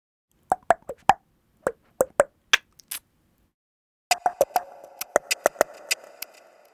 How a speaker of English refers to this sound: I have drawn inspiration from the language around me here in Cape Town. The Xhosa language contains three clicks, the X click, the Q click, and the C click. Using a combination of these, I created a rhythm.